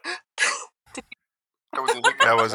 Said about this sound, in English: That was a I thought you gasped. Hiccup is all that was. No, it was an agave hiccup.